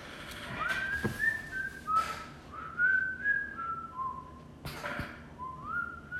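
A whistled melody of sliding, sustained notes rises and falls over a steady noisy backdrop, punctuated by a few sharp cracking hits, fairly clear and up front.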